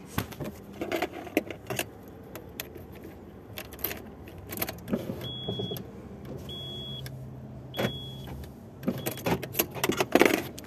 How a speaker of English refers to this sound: Okay, I rolled up the window. There's like two ladies outside my car. I rolled up the two side windows and rolled the other ones down because it's pretty hot.